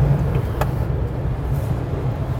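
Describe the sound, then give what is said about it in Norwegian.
Steady low rumble of a car driving, with road noise coming in through an open window, continuous and fairly loud, plus a brief faint click partway through. “Skal du se om det bråker mindre hvis du tar opp vinduet?”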